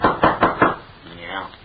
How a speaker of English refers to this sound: Here we are, here. I'll just knock at this door.